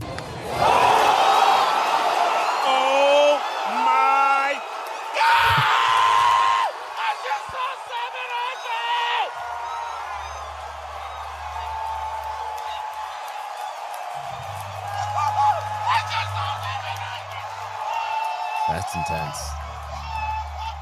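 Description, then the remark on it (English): A loud crowd at Dodger Stadium roars and cheers for about twenty seconds as Albert Pujols hits his 700th home run, with whoops, yells and scattered clapping blending into a dense, sustained wash of noise that swells and fades. “And that is in Dodger Stadium. Everybody was clapping there.”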